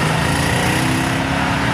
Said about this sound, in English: From one iconic tuning division to another, AMG. Ooh. Now, there's a hand-built engine under the bonnet. Hand-built? With a fantastic voice. Just listen.